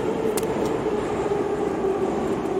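A train passes through a station with a steady, loud rumble and a sustained mechanical hum, broken by a brief sharp clank near the start. No voices are heard.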